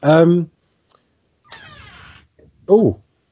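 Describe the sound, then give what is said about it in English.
A trap door creaks open in a short wavering groan as a kitten comes into the room, framed by two clear kitten meows, one before and one after, each rising and then falling in pitch. “Someone just opened the trap door. That was a kitten coming in the room.”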